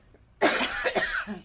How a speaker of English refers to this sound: Let me get that cough out of the way.